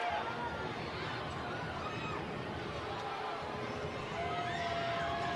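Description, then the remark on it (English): A large crowd roars steadily in an arena, cheering and shouting with dense, continuous babble that holds at a loud, even level throughout, with scattered higher-pitched yells and whistles; the ball is dead while the Jazz Bear mascot throws buckets of popcorn into the crowd. “No, excuse me, the Jazz Bear is right in front of us, and he's throwing buckets of popcorn into the crowd, and predictably the popcorn is flying all over the place.”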